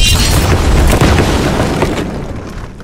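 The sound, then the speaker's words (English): A heavy 100-pound safe slams down onto bulletproof glass in a test built with a trampoline, with a loud, booming crash, followed by a dense wash of crackling, crunching noise that slowly fades over a few seconds, with no talking. “The test we built consists of a 100-pound safe, a trampoline, and bulletproof glass.”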